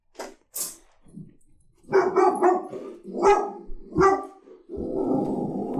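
A dog barks in a burst of several sharp, loud barks with short gaps, ending in a lower rumbling growl-like bark that trails off.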